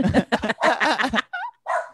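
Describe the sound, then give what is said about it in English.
A dog barks in a quick burst of rough barks, followed by a couple of higher, whiny yips with brief silences between them. “My dog agrees.”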